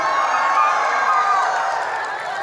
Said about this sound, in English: So Philistine army, start running in place with fear on your face. And verse 52, the men of Israel and Judah rose with a shout and pursued the Philistines as far as Gath and the gates of Ekron. So you start running and shouting really loud as you do.